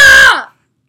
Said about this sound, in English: I like how the bar goes all the way to the red every time we scream.